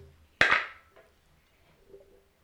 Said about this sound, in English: Let the dice be the judge. I get to roll it this time.